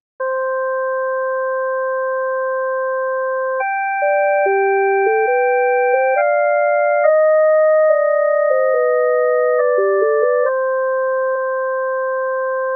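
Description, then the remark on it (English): Pure electronic sine tones play a Bach fugue theme at double speed, with the alto and tenor short lines entering only one beat apart. A quick stepwise melody weaves beneath long sustained higher notes, steady and moderately loud with no voices. “Let's just hear the double speed explosion separated by one beat.”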